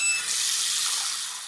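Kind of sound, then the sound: household object, tap water running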